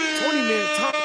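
sound effect, air horn sound effect

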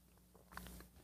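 food or drink, slurping a drink

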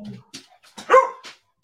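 animal, dog barking

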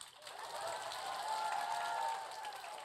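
crowd, convention audience applause

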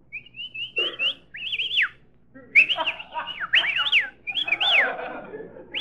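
human body sound, people whistling

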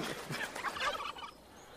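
bird, wild turkey gobbling

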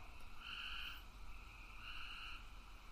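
animal, bullfrogs croaking

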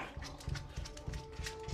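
animal, dog whimpering

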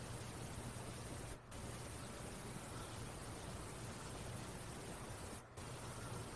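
sound effect, white noise

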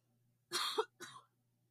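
human body sound, coughing fit

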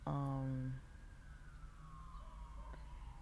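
vehicle, emergency vehicle sirens passing

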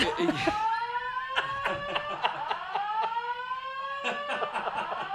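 signal or alarm, fire alarm being tested

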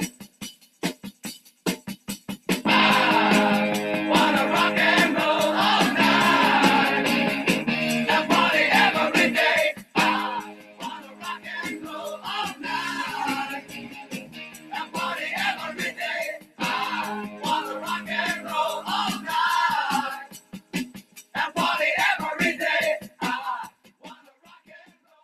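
sound effect, rock song playing

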